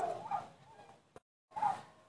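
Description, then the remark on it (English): Dogs barking: a longer bark-like burst, then a short gap of silence and a second one. The barks are tonal and mid-pitched at a moderate level, with no talking over them. “Please forgive the dogs going off in the background.”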